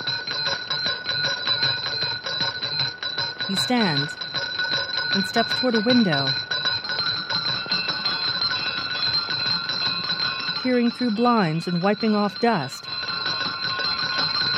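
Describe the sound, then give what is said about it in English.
Bells, heard by Scrooge in a scene where a doorbell rings, ring steadily throughout, a bright, shimmering, sustained peal layered with high metallic tones, while a man speaks calmly over them in two short stretches. “When he hears more bells, he sets down the bowl.”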